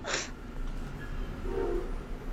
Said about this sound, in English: There goes the train. If you hear it, train just drove by. Or trained by.